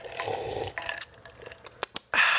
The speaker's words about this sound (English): But first, I'm gonna take a sip of Gatorade.